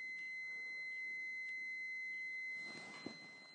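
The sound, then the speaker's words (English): A household alarm in a house, not the fire alarm, sounds a steady, piercing electronic tone with faint pulses, continuing for a few seconds before cutting off abruptly, followed by a soft click in otherwise quiet surroundings. “Some kind of alarm going off in my house.”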